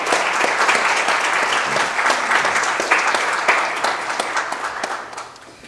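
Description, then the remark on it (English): A church audience breaks into sustained applause to thank volunteers for their years of keeping the church flower beds beautiful, a dense wash of many hands clapping at a steady, fairly loud level before tapering off slightly at the end. “So I would appreciate if everybody could just applaud with me to give them our warm love.”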